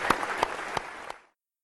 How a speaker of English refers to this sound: Well, thanks you so much for coming here, and a round of applause for the panel.